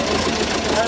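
A vintage 1945 Fordson tractor engine, hand-cranked to life at the Newdigate Machinery Field Days in WA's southeastern wheat belt, runs with a loud, steady knocking chug, its rough idle filling the whole brief moment without a break.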